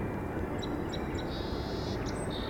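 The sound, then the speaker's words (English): Several song sparrows sing in competition with one another over a steady low rumble: a few sharp, high introductory notes followed by a buzzy, rapid trill, then another short trill, thin and fairly faint against the drone. “Song sparrows.”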